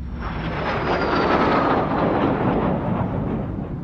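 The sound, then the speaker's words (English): A loud, sustained roar of a jet airplane taking off, a broad rumbling wash of engine noise with a high whine on top that holds steady for several seconds, no voices. “Did you say an airplane?”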